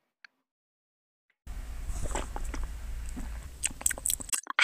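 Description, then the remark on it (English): Wet slurping sips of tea with small mouth clicks and smacks, continuing for about three seconds after a brief silence, with no talking. “Do you guys like ASMR? Because this is like tea sipping ASMR.”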